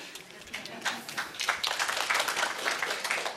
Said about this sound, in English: You don't have to applaud me. I'm not going to do it again.